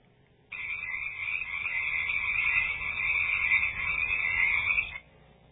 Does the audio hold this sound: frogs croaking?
yes